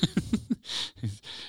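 A quick run of short, low voiced bursts, then three harsh, breathy coughs in close succession, with no talking, from a person who has been coughing all week and taking medicine.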